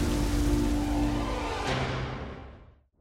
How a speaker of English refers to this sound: That rain is really getting bad.